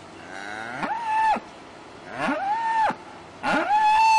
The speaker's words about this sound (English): So they were just screaming. And I was like, I've never heard a cow scream.